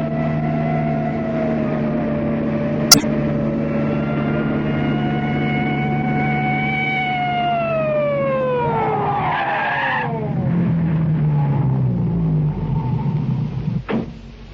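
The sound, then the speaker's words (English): A steady police car siren wail over a low engine rumble holds its pitch, then slides downward as the vehicle slows to a stop, with a sharp click near the start and end. “Anyway, we can't run away from a police car and a station wagon.”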